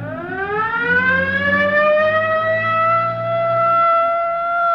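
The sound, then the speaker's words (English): A police car siren wails loudly, its tone sweeping slowly upward and holding steady, with a low rumble underneath and no voices; the police car is pursuing a car heading down toward Rosecrans. “Better hit the siren.”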